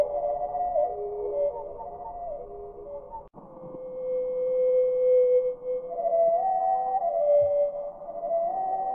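Slowed-down song of a North American hermit thrush: long, drawn-out whistling tones that glide and waver, with layered notes early on and smoother sustained pitches after a brief break, heard alone at moderate volume.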